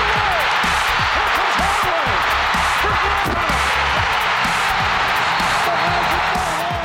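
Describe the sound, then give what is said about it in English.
A roaring basketball arena crowd at game one of Chicago against the Magic, as Jordan has the ball knocked away by Nick Anderson late in the fourth quarter, fills the whole stretch with dense, steady noise, scattered whoops and shouts rising above the wash, with loud, sustained cheering throughout. “It's a little tough to hear over the crowd, but Jordan has the ball knocked away by Magic guard Nick Anderson, allowing his team to score and win.”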